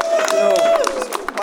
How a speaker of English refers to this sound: Well, first of all, thank you to the Writers Alliance, community service, society, the whole coalition. You deserve a big round of applause.